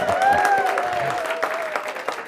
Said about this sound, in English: The curtain raises, and once again, there's huge applause from everyone.